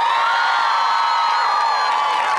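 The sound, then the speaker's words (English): A crowd erupts in loud, sustained applause and cheering as an actor's TV credits such as Hannah Montana and Zoey 101 are listed, a dense wash of clapping with high shouts and whoops layered on top, holding steady throughout. “I didn't factor into our time the amount of applause that each of these are going to get.”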